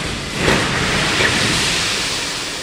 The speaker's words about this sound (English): The gravel shoots into the water, sending waves across the pool.